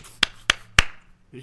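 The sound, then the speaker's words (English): Three sharp, loud hand claps in a steady, evenly spaced rhythm, each crisp and brief, then a short pause before a voice starts faintly at the end. “I don't know what that was. Just McDonald's clap.”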